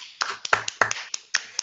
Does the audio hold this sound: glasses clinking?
no